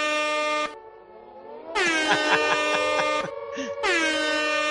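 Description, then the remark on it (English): A loud, blaring MLG air horn meme effect played from a soundboard: a short blast, then a longer stuttering burst of rapid repeated honks, and a final sustained blast, played alone with no talking. “The MLG air horn.”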